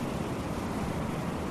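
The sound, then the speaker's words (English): A steady, hollow rushing roar like ocean waves heard inside a seashell, continuous and even in loudness throughout, with no voices or other sounds. “A shell with which to hear the ocean's lullaby.”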